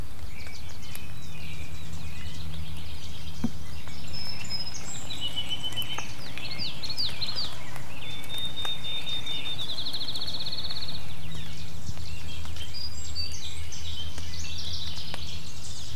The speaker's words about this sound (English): But anyways, it's a lovely morning, and I'm hearing so many birds out here. Take a listen.